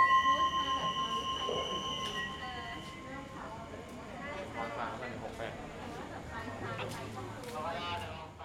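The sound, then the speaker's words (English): An overnight train from Chung Phon to Bangkok, Thailand, rolls along the tracks with a steady high-pitched whine at first, then a continuous rumbling clatter, with indistinct voices murmuring in the background. “And then we got to Chung Phon for our epic overnight train journey.”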